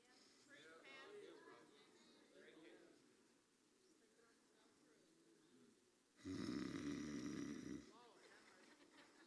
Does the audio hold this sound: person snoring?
yes